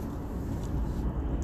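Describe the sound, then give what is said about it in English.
A steady, low rumble of a car moving slowly in heavy traffic on the way to a rock wall, with constant road and engine noise filling the background and no distinct events or voices standing out. “Oh, still on the way to the rock wall. There is a lot of traffic and I am going slowly, but I really don't care.”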